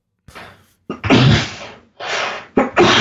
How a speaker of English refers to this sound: Are you okay? That part, I was sneezing.